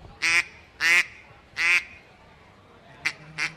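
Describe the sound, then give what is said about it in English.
A duck call is blown, giving three loud, drawn-out quacks followed by two shorter, quicker ones, imitating a quacking duck; no talking. “Do you want a turkey or duck? I'll do duck.”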